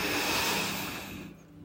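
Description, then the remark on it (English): A long, steady inhale drawn through the nose, a soft airy rush that holds for over a second and then fades away. Fairly quiet, with no talking. “Take a deep breath in through your nose and out through your mouth.”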